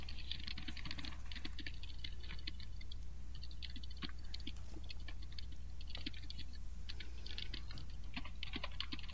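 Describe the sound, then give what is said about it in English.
Rapid, irregular clacking of keys on a computer keyboard, steady for the whole stretch, with a low constant hum underneath and no voices. “What are you typing?”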